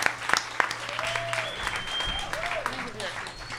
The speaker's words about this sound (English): Keep the applause going. Keep it going. Keep it going.